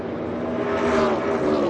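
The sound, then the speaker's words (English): Steady, loud engine roar with a high sustained whine as race cars drone past at speed during the final laps of a race, with one lap to go, holding constant without pause and swelling slightly in the middle. “So here is his final laps, burnout, and interview”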